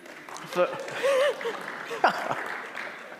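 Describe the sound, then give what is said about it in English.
A round of applause: dense, steady clapping for about three seconds, with a few raised voices and whoops rising briefly above it. “I never thought I'd get a round of applause for that.”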